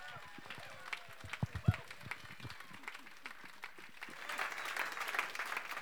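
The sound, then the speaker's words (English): An audience breaks into applause of welcome, many hands clapping in a dense, crackling patter that starts uneven with a few louder claps, then swells into a fuller, steady ovation toward the end. “So why don't we just give a big clap and warm welcome”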